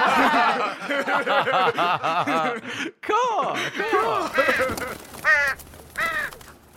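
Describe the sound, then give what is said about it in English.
A voice imitates a crow-like bird swooping in to take the silver, letting out a rapid series of loud, raspy caws, with a brief pause midway before a few more sharp calls and a hint of chuckling. “Bird swoops in, takes the silver.”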